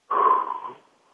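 A single airy breath rushes out for under a second during a guided deep-breathing exercise, loud at first and then trailing off into quiet, with no talking.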